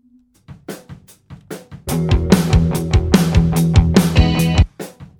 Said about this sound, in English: I am going to EQ out some of that ring and honk on the snare drum.